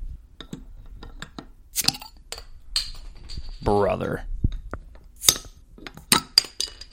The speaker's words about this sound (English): Yeah, let's crack these open. We actually have them unopened. I don't even know if it's going to make a noise.